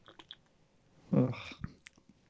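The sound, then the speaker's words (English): A single sip of Heineken 0.0% non-alcoholic beer, a brief wet slurp lasting about half a second, followed by a few soft mouth clicks and quiet swallowing noises. “I'm just going to do a little sip here, see how it tastes.”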